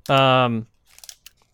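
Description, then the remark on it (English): A short sustained voiced sound, then a few soft, crisp crunches and chewing clicks close to the microphone, scattered irregularly over about half a second. “They're just going to be chewing eating, into yeah. the mic, essentially.”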